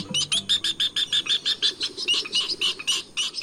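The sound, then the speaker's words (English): A rapid series of sharp, squeaky chattering calls from a northern jacana, repeated in quick rhythmic bursts, loud with no talking. “The northern jacana, found in Mexico, Central and South America, and Cuba.”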